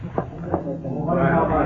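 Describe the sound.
Two sharp, quick slaps to the face land about a third of a second apart, each a crisp smack, followed by a man's voice beginning to speak.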